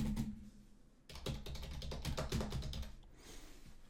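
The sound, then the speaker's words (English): Rapid clattering keystrokes on a computer keyboard as someone fakes typing, fairly loud, starting after a brief quiet moment and continuing in a steady burst for a couple of seconds before stopping. “Can't even hear me fake typing. Fucking keys.”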